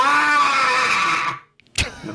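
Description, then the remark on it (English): A loud burst of death metal: a harsh, distorted scream held at a steady pitch for over a second, then an abrupt cutoff, a brief pause, and a sharp crash of noise. “Little screaming vocals right there.”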